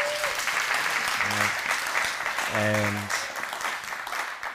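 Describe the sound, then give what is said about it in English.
An audience in a church applauds to welcome a married couple whose union is to be blessed, steady, dense clapping broken by a couple of short voiced calls or whoops rising above the clapping. “So yeah, I expected a better clap than that.”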